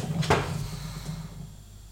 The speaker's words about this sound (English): Did you just nearly knock something over? I did. I've knocked a candle over.